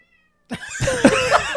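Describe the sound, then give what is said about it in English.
After a moment of silence, a person's short low rumbling burp gives way to a cat's loud, drawn-out meow, its pitch rising and bending. “As I burp and the cat meows.”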